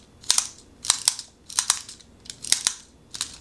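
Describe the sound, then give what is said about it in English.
A pencil being sharpened in a wind-up walking pencil sharpener: six quick, scratchy grinding bursts in a steady rhythm, each with a doubled crunch, fairly quiet with no talking. “The pencil is sharpening it, actually. There we go, so you just took a little effort to get the hang of it, I think.”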